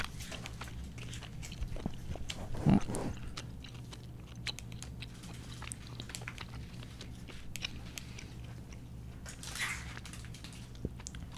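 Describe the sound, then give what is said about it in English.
Someone chews rice paper candy with a steady run of small, crisp clicks and crackles, one louder crunch early on, over a faint low hum and no talking. “I'm going to eat those throughout this pod. All you ASMR freaks are going to go hog wild.”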